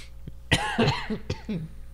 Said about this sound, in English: Yeah, she's coughing and trying to deal with her illness over here.